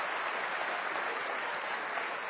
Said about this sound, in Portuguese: E se você não é invejoso, eu quero ver agora, você vai aplaudir o nome do Senhor Jesus. Mas só se você não é invejoso.